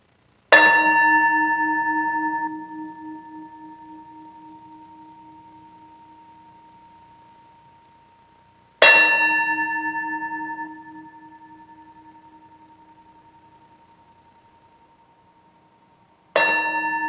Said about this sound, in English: Please take some breaths as we listen to the sound of the bell.